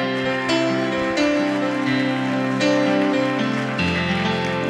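A church audience applauds their pastor in a steady, dense wash of clapping while sustained keyboard chords play loudly underneath, shifting harmony every second or so.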